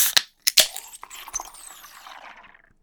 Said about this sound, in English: I'm going to crack this beer for you here because... We know I love sound bites. Who are we sponsored by today? Guinness. Leftover Guinness from St. Patty's Day.